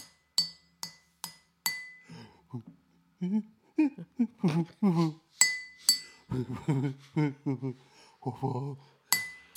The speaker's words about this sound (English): For those that don't know, I had a real good pen glass bit going on there. It was really good.